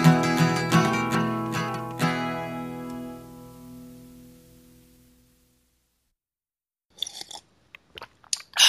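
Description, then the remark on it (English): A sustained musical chord rings out and slowly fades to silence, then a few short, close-up mouth noises follow, like quick sips from a drink. “That was a sip pause that I mistimed.”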